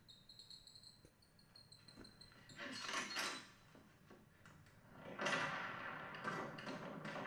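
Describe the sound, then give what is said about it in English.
A door slides and scrapes open in two drawn-out, fairly loud bursts, with thin high insect-like chirping audible at the start and a low rumble underneath. “No, she said it's moving. The door.”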